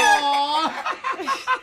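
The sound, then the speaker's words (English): A hen clucks clear: one drawn-out, nasal squawk followed by a quick run of short, choppy clucks, loud and alone with no one talking. “And chicken coop bingo, where two chickens actually pick out the bingo numbers.”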